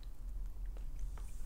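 Soft chewing with a few faint crunchy clicks scattered over a low background hum, as someone eats a bite of a date stuffed with goat cheese, chives and pecans, with lemon juice and salt, wrapped in prosciutto. No one speaks.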